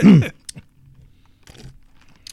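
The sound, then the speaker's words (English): A wet slurp as someone sips a drink, followed by a few soft mouth clicks and a swallow in otherwise quiet surroundings. “Let me take a sip for you.”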